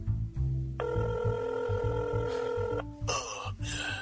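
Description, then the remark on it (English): A telephone rings steadily with a sustained electronic trill, clear, over a low rumbling background with no one picking up. “Now to call up the pink elephant and reveal to Night Night's greatest enemy his secret identity.”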